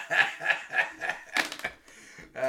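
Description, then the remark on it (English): Pens drop and clatter onto a hard surface in a quick burst of light clicks and rattles, mixed with short rhythmic vocal sounds like laughter. “All right, I'm dropping pens all over the place.”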